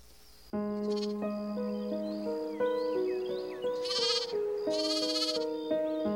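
Sheep bleat in two or three loud, wavering calls, heard over a steady backdrop of sustained musical tones that shift from note to note.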